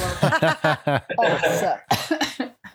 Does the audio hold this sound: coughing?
yes